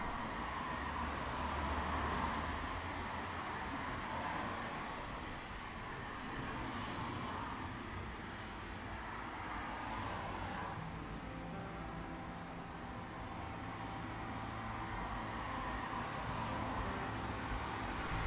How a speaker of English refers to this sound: The time of morning before the sun rises and the sky starts to light up, but the birds aren't out yet. I walk outside and all I can hear is the wind and the hum of distant cars, and I feel peaceful.